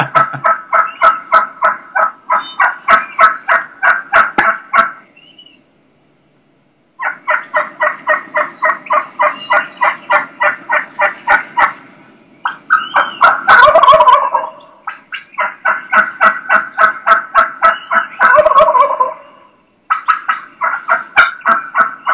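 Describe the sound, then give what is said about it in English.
Rapid, sharp turkey cutting calls in loud bursts, with a wild turkey gobbling twice, breaking through the fast, excited clucking. Loud, no talking, with a short pause between bursts. “That's where you start getting that cutting. Cutting is very similar to clucks.”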